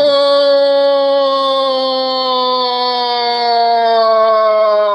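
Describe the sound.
A person's voice imitates the long, loud, whale-like moan of a Gundam mech coming to life, one unbroken tone that holds steady and slowly sinks in pitch for about five seconds with no other sound around it.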